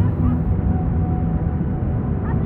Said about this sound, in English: It's a long, beautiful beach in the middle of Monterey Bay. And I'm walking far enough away from the waves. They all kind of blend together and create a white noise backdrop.